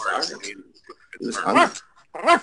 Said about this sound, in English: Yeah, last week my dog was barking and Richard was going, what's that barking over there?